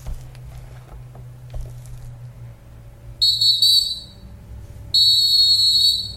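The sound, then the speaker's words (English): Someone whistles two loud, shrill bursts, a short one followed by a longer sustained one, over a low steady background hum with no talking. “Man, that whistle been great, man.”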